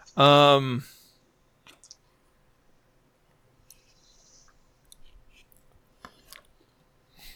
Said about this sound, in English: I can hear all the munching, all the food sounds.